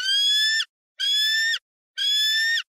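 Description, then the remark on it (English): A baby bald eagle calls three times in a steady rhythm, each cry a loud, drawn-out, harsh whistling screech lasting over half a second, with silence between. “It might be a baby, but it is a bald eagle.”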